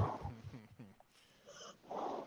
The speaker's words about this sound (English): All right. I'd like to begin this by asking if there's like a sleeping dog going on in the background somewhere. If there's a just what?